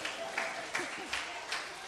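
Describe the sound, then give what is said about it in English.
Sparse, evenly spaced claps, about four in steady rhythm, rise over a background of murmuring voices, more like a scattered round of applause than a full ovation, as a group gives itself a round of applause. “Okay, for those who are going strong, give yourself a round of applause, all right?”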